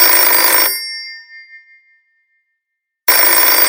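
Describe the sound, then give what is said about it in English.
An electronic telephone ring sounds loud in two bursts, with a bright ringing tone that fades into a brief silence before the next ring starts. “Wait, is that the phone? Oh, yes. Oh, yeah. Shit. Word. What the? Yo. Phone's ringing.”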